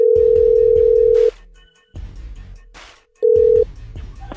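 A phone line rings out with a steady electronic tone, pausing and starting again, while clicky dialing and handling noises crackle underneath, as the Cosmo and Kat Show, a morning show on Y107, places a call. No one speaks.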